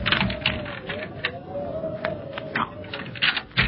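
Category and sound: household object, key turning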